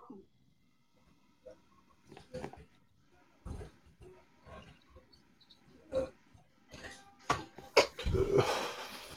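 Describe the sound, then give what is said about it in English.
Water bubbles and gurgles through a dab rig as wax is heated in a banger under a carb cap, in irregular, low, throaty bursts, sparse at first and then growing denser and louder toward the end. No one speaks. “I don't know, I'm not even sure if you guys can hear the bubbling or not, can you?”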